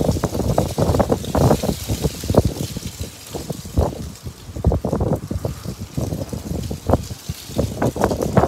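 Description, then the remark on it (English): Strong outdoor wind buffets the microphone in loud, irregular low rumbling gusts that continue throughout with no pause, and no voices can be heard. “But yeah, fucking windy.”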